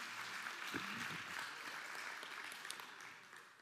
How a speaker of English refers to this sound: In Jesus' name we pray. Amen. Amen. Amen. Yeah, you can clap. Amen. 100% amen.